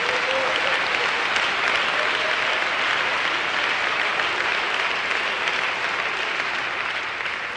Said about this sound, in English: let's clap our hands and praise Jesus